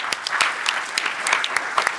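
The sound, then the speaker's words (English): A conference audience applauds for Walt Mossberg, a dense stream of many hands clapping at once with sharp, irregular claps popping out of a steady wash, holding at an even moderate level throughout. “So everybody give a clap for Walt Mossberg.”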